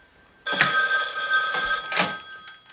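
A telephone rings with a bright, steady electronic trill starting abruptly and continuing for a couple of seconds, close and fairly loud with no one speaking over it.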